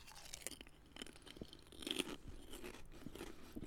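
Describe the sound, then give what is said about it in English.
Crunching of light, airy Skips prawn cocktail flavour corn snack crisps being chewed, a steady run of irregular crackly bites with no talking. “They literally crunch and melt in your mouth at the same time.”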